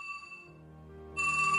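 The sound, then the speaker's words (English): Neil Blaney's telephone rings on the night of August 12th, during the unrest in the Bogside, with a steady, bright tonal trill that eases slightly, then surges louder again as a new ring starts near the end. No one speaks. “For example, the story is told that Neil Blaney's phone rang on the night of August the 12th, when stones and petrol bombs were flying in the Bogside.”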